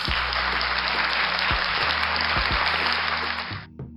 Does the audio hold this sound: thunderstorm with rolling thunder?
no